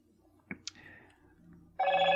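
A couple of sharp clicks, then a telephone suddenly starts ringing loudly, a bright, steady electronic ring that continues to the end with no talking.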